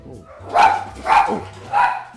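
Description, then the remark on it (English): A dog, Frankie Dog, barks three times in a steady rhythm, each bark sharp and fairly loud, with a low background hum between them. “I'd like to welcome the special guest, Barker, for the evening.”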